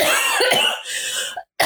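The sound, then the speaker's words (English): A loud fit of harsh, raspy coughing in a couple of rough bursts, then a brief silence before another cough starts. No one speaks. “Sorry, I've got to cough.”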